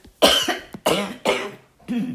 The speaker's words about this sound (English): Let me clear my throat.